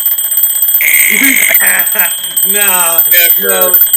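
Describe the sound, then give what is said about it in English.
A voice mimics a shrill alarm clock going off first thing on waking on a bus parked at a hotel, a few seconds of warbling, buzzing tones rising and falling in quick bursts, loud with no other sounds around it. “And so, at, you know, first thing, the alarm goes off.”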